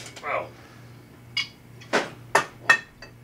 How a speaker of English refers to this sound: The fact that you have to shuffle a bunch of bottles to get to one is not okay. And that there are multiple whiskeys.